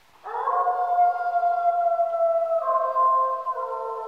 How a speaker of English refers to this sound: When we looked at the howling behavior of red wolves and the howling behavior of coyotes, and also the howling behavior of the eastern timber wolf, which is a smaller subspecies of gray wolf that occupies the northeastern United States.